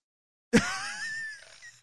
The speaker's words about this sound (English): See, she yawned again.